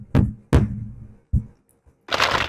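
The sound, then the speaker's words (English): A hammer used to open a tightly sealed email strikes three heavy knocks, each with a short ringing decay, then a faint tap and a brief crunching, cracking burst. No one speaks. “Where's my email opening hammer?”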